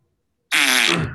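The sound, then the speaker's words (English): A loud fart sound from a man in a film scene bursts in after a moment of silence, a single sustained buzzy blast lasting over half a second before tapering off slightly at the end. “Yeah, he farts.”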